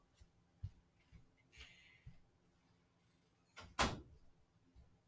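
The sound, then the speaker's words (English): A door swings shut with one loud thud, preceded by a few soft knocks and shuffling movements and a brief hiss, with no voices. “Okay, I just shut the door, ladies, so I could do my show to concentrate.”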